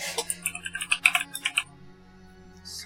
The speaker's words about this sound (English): So what am I typing then?